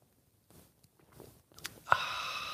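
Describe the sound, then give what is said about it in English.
Soft mouth sounds and a quiet breath, then a brief airy slurp as someone sips coffee, all faint with no talking. “Fill it with your favorite liquid. I like coffee.”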